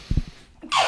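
A short sneeze: a few low, breathy catches of air, then a sudden loud, hissing burst of noise at the end.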